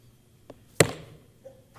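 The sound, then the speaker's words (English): A single sudden sneeze bursts out loudly after a faint catch of breath, then trails off quickly into quiet. No one speaks during it. “Bless you.”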